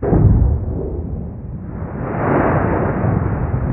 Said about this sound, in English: recorded at this close-in station, which was 410 kilometers away from the source. Let me play more of this event. You're going to hear two things: the gunshot sound from the actual earthquake, and then you'll hear something else.